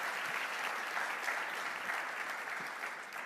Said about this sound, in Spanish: Y los demás de casa, dense un fuerte aplauso por estar aquí temprano.